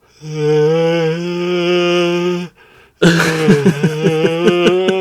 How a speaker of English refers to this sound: Oh, sorry, I was yawning.